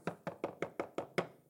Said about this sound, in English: So she walks up and she knocks on the door.